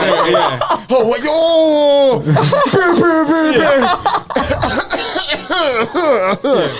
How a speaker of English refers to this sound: I'm coughing now.